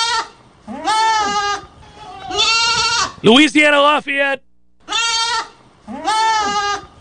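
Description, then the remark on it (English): Goats bleat repeatedly in the background in wavering, nasal cries, about five or six calls with short pauses between, fairly loud, while a person speaks briefly in the middle. “Goats are awesome. I can hear the ones in the background now.”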